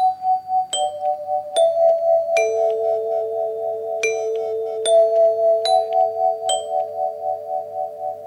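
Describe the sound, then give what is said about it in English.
A doorbell chime, a gift from a band's drummer to a singer, rings out a slow melody of about eight bright struck notes, each tone lingering and overlapping the next. Clear, with no voices. “The doorbell was a gift from … drummer … to ….”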